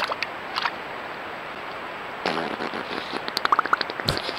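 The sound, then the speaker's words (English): A beaver splashing in water and farting, recorded by a camera's microphone: a broad wet burst, then a quick series of short bubbly pops from the beaver's fart and a final sharp splash over a steady watery hiss, with no talking. “That was a straight-up beaver fart.”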